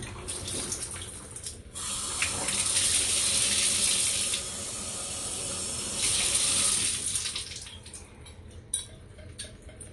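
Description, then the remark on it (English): Cold shower water, about 10 degrees, runs steadily with a hissing spray that swells louder for two stretches before settling back to a softer trickle; no one speaks. “Cold Shower Talk”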